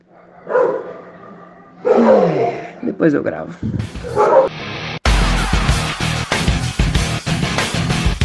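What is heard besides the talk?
dogs barking and yipping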